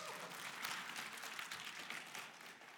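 An audience bursts into steady applause for a person who brought the presentation clicker, a dense crackle of many hands clapping together at an even volume for a few seconds, with no voices standing out.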